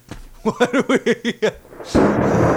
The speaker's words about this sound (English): Sorry I had to bring that thunder down on you, Tim. I had to bring the thunder down on you.